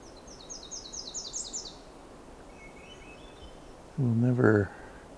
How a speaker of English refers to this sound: It's very similar to the seabit. It is a slightly bit lighter, but Myrtle Warbler never really has harshness to that. It's always soft.